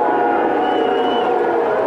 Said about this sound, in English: It was only after the songs played that the Texans took the field and the two teams linked arms at midfield. This, from the NFL's Twitter account, is what the small crowd at Arrowhead thought of this display of unity.